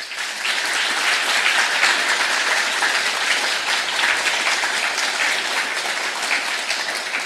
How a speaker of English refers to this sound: So a huge round of applause to our speakers once again.